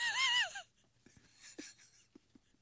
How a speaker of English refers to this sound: I hear your kids crying. Hold on.